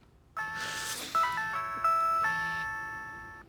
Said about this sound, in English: Well, you heard it. You heard it. That was the classic ringtone from the old school Nokia